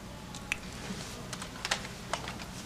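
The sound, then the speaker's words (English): A handful of crisp, irregular clicks from someone typing on a computer keyboard, tapping slowly and hesitantly with pauses between keystrokes, quiet, with no talking. “Just use the keyboard.”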